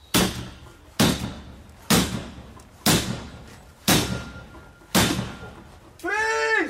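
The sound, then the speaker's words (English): Police officers pound a door with a battering ram called an enforcer six times at steady one-second intervals, each heavy booming slam ringing out briefly, before a short wavering, bleat-like cry takes over at the end. “She wasn't the one who was with the battering ram into the door.”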